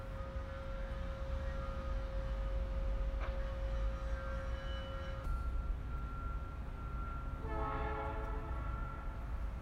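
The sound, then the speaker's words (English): A distant train in Memphis rumbles steadily with a low, continuous drone, while a long sustained horn tone holds for several seconds and a rising, wavering horn blast swells near the end. “I wanted to distinguish between this, which is literally a train just a few feet away from me, and this one, which is labeled distant train.”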